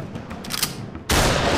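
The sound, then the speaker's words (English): Several sharp, booming shotgun blasts in quick succession, fired at a gorilla lion, followed by a sudden, much louder roar of sustained noise that holds to the end. “You can see that Nadia tries to empty her shotgun into it.”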